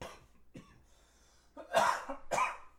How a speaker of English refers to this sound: Oh, sorry. Tried to warn you that I was about to have a coughing fit, but just came on.